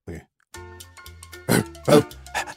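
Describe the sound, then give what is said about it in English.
A person imitates a dog, making low voiced grunting sounds followed by several loud, breathy panting bursts in an uneven rhythm. “you are a dog.”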